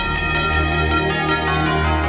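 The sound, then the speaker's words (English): Bells ring continuously in a dense, steady peal, strikes landing in quick succession over sustained ringing overtones. Fairly loud, with no voices. “ring those bells.”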